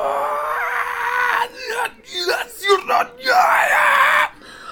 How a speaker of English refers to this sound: And then you start to hear something that sounds like a backwards recorded, subtle scream.